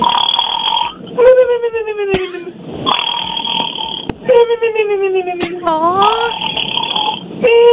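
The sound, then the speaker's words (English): A radio contest caller imitates snoring in a best-snore contest, making two long, throaty voiced snores that slide downward in pitch, each followed by a breathy rush of air, fairly loud throughout. “Let's hear your best snore,”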